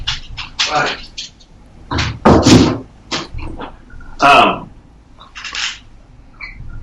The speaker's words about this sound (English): And hold on real quick, I got my dog scratching going on.